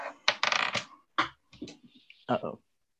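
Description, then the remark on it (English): Dice rolled in a tabletop game clatter and tumble across a hard surface in a rapid burst of clicks, then bounce a few more times in scattered, fading knocks as they roll away and drop off the table. “Uh-oh. I lost the dice.”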